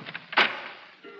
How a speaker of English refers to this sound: Oh, that's the front door. Well, I'd better open it.